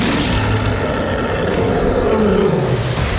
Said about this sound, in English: A mighty roar rang out across the valley.